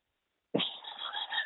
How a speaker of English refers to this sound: I have to stop for a second because there is a bee in here and it is right behind your head. A bee.